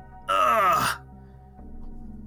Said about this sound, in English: And then the kid that you're talking to just kind of like yawns,